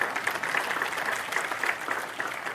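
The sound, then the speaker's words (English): A crowd claps its hands in a steady, dense patter of many overlapping claps, sustained and moderately loud throughout with no voices standing out. “Somebody please say amen. Amen. And clap your hands.”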